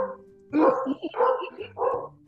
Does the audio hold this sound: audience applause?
no